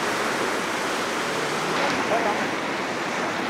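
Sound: rushing river water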